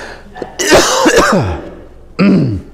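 A person coughs: a harsh, drawn-out cough with a rough, throaty tail, then a short pause and a second, briefer cough. No talking is heard.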